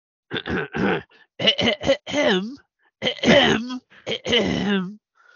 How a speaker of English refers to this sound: I'm trying to clear my throat, but without like just. Because I was already in the middle of speaking, so I thought I'd just give a dainty cough instead of blowing out your eardrums with my regular hacking and hacking.